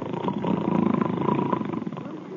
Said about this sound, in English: How you like that? I really must be tired. I ain't asleep, but I'm snoring already.